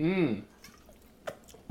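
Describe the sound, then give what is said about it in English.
A short voiced sound opens, then quiet sips from bottles of Topo Chico sparkling mineral water during a toast: a few brief wet slurps and mouth clicks spaced apart, with a sharper one at the end. “Get your Topo Chicos up. Nice little mineral.”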